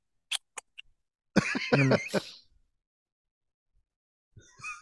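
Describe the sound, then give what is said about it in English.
Three quick sniffs in a row at a glass of Blanton's whiskey, followed by a short throaty, voiced exhale like a murmur or cough, then quiet before a breathy rustle at the end. “I appreciate you sniffing it.”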